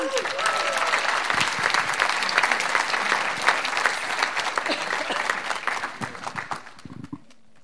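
A crowd claps steadily in a dense, sustained burst of applause that stays loud throughout, then thins out and fades near the end.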